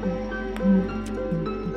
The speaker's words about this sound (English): As you move a bit more through the jungle, you hear what sounds almost like bubbling.